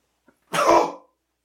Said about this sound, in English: In case you guys are curious, that's how bad of a sneeze it was.